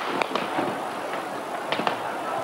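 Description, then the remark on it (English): Gunfire in the centre of Peking: a few sharp cracking shots in two quick pairs, ringing out over a steady wash of outdoor background noise, with no voices. “The noise of gunfire rose from all over the centre of Peking.”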